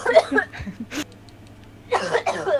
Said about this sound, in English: Are you coughing up mucus right now? I did this. Yep, there it is.